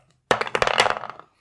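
Dice rolled in a game clatter across a hard surface in a quick burst of sharp, bright clicks lasting about a second, then trailing off into silence; the roll comes up 18.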